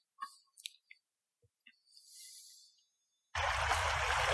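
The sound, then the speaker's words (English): A few scattered clicks and a brief hiss, then a loud, steady rush of flowing creek water cuts in abruptly and roars on, continuous, with no voices; a creek after a second flood, two weeks after a 100-year flood. “All right, the video we're watching now is of that, not the exact same spot, the same creek when I said we had that 100-year flood.”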